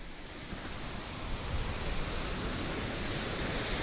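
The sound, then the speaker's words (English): Ocean waves break on the shore of the Outer Banks in a steady, roaring wash of surf, swelling slightly midway through, with no voices, just the continuous rush of water and a hint of wind. “Listen to the soothing sounds of the ocean waves off the Outer Banks.”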